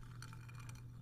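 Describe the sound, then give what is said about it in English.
Ice cubes clink softly inside a glass, a handful of quick, bright taps over about a second against a steady low hum. No one speaks. “I'm sorry, you can also probably hear the ice clinking inside of it, but I love it.”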